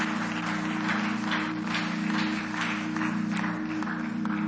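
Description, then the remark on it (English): An audience, standing on their feet at a morning service, claps steadily for several seconds, a dense, continuous patter of many hands, with a sustained low keyboard drone holding underneath throughout. “Yeah, go ahead if you want to clap.”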